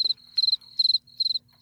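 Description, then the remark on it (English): Crickets chirping in quick, evenly spaced bursts of high, pulsing trills, clear, with a faint steady hum underneath and no talking. “The crickets thing. In the office chirped.”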